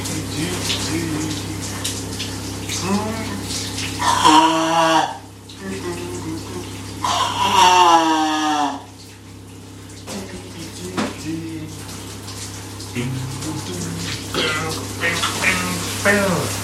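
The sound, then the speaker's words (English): Shower water runs in a steady hiss throughout, while a voice sings or hums in a couple of loud bursts over the spray. “And off we go with the shower”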